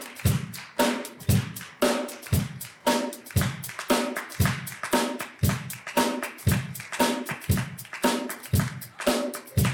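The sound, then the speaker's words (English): Sharp hand claps repeat in a steady rhythmic beat, roughly two to three per second, loud and crisp with no voices over them. “And it's to be a clap so I can hear, all right?”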